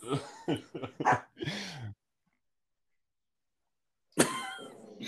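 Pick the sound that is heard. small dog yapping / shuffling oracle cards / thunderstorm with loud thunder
small dog yapping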